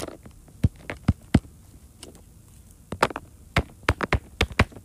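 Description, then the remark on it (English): Soft, quick pops of a dinosaur-shaped silicone poppet fidget toy being pressed, a few scattered clicks at first, then a faster irregular run of sharp little pops, fairly quiet with no talking. “And I have a kind of dinosaur poppet. I'm gonna do some quick ASMR for you.”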